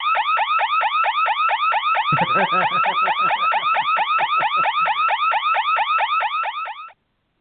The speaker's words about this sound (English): I did it again, J-Man. The last time I set off the alarm was about 3 years ago when Drive-By went to Tennessee, and I freaking did it again as he was in Tennessee. Mm-hmm. Must have hit a wrong button or something.